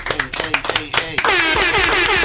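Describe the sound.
A man speaks briefly, then a sudden, steady wash of audience clapping and cheering for a special guest fills the second half, loud and dense, continuing to the end.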